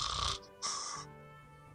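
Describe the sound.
A female person tucked in under her blankets makes exaggerated fake snoring sounds, two loud raspy breaths with a pause between, and a third starting at the end.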